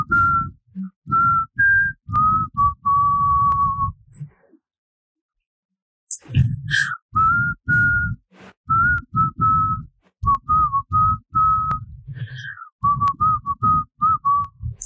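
A person whistles a melody, the notes steady and clear, with a short pause partway through before the tune resumes. Low breathy noise and some background sound run beneath the whistling.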